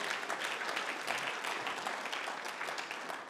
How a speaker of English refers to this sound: Give him a clap one more time.